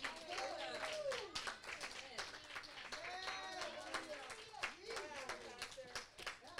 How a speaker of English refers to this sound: Come on and clap and accept your responsibility. Come on and clap and accept your responsibility.